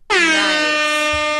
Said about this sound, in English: Nice. Air horn.